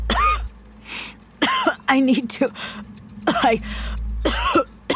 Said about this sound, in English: You seen a doctor about that cough? I don't need a doctor.